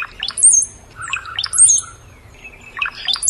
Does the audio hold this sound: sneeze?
no